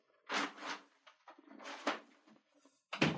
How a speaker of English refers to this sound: Sorry, let me close this door.